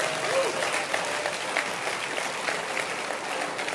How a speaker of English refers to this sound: Can you clap your hands that you made it today?